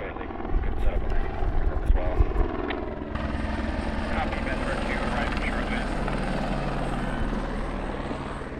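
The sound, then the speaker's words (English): Two helicopters roar steadily with a deep, rapid rotor thumping throughout as they land in two cleared landing zones about 60 meters apart; a few seconds in, the sound shifts to a brighter, hissing turbine whine layered over the continuous low drone. “And these two birds have landed, and we've cleared two adequate landing zones approximately 60 meters from one another”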